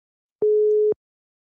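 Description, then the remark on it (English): A telephone busy signal: a steady electronic tone sounding for about half a second, falling silent, then starting again in a repeating on-off pattern, clear with no voices. “It said user busy.”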